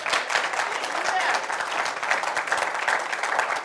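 An audience at a church service claps for Jesus in a steady, dense wash of applause that holds at an even loudness for the whole stretch, many hands overlapping into a continuous crackle without any voices.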